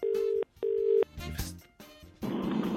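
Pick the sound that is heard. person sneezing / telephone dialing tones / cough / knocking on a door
telephone dialing tones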